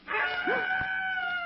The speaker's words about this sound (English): Screech owl.